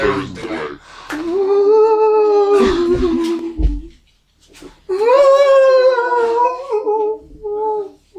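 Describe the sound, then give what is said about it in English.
A dog named Chum howls in two long, wavering cries, each rising and then sliding down in pitch, loud, with a brief pause between them and no talking. “Can someone shoot that dog?”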